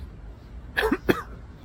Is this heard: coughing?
yes